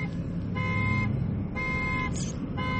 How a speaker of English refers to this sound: Someone's car alarm just went off. Everything is fine.